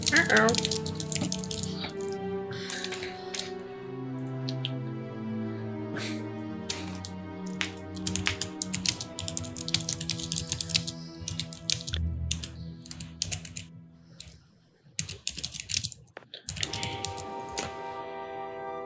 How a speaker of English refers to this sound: Uh-oh, typing. Digital whispers.